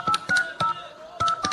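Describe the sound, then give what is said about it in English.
Touch-tone keypad beeps as a telephone number is dialed to make a call, five short tones in quick uneven bursts with a brief pause in the middle, clear with no talking. “Look, I think we should probably use it to phone Susan in undergrad.”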